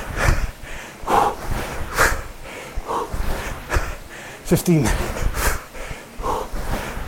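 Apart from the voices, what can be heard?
heavy breathing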